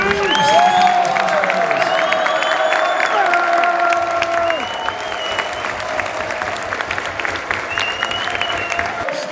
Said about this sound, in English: First of all, a big round of applause